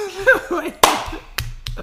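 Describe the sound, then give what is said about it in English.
Hands clap on a 3, 2, 1 countdown as people in the same room try to clap together, a few sharp, uneven smacks, one loud crack followed by two lighter ones, with voices murmuring and chuckling around them. “Wait, we're gonna clap?”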